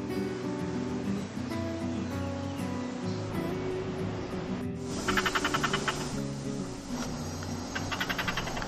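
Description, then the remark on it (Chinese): A squirrel in the trees gives repeated warning alarm calls in two bursts of rapid, croaking chatter, fairly close and clear over a steady low outdoor rumble, with no one talking. “係啊，呱呱呱呱，嗰啲咧就係佢嘅叫聲啦。其實係一種即係警示嘅叫聲嚟嘅。”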